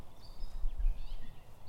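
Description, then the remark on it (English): A catbird calling faintly, a few thin, high whistled notes rising and falling over a steady low rumble, with no one talking. “What is that bird? There's another catbird, some red wings, some silently cruising mallards.”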